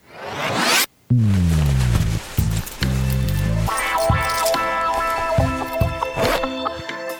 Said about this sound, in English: All right. We've pulled the zipper down.